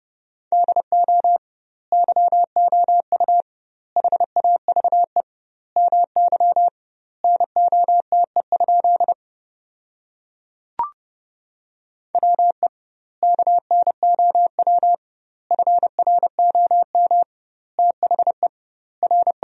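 A steady mid-pitched beep keyed on and off in rapid dots and dashes, sending Morse code practice sentences built from the top 500 words at about 30 words per minute with double word spacing, in quick clusters with brief pauses between words, plus one short click midway.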